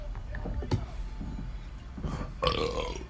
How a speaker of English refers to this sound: Here come the burps.